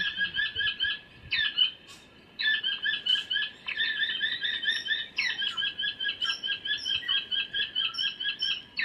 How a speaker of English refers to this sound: With the sound system, it will draw the birds in, and they'll try and hop from one side of the track to the other, and we'll play some calls and see what's around.